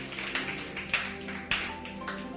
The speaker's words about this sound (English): Clap your hands and bless the name of God. Thank you, Jesus.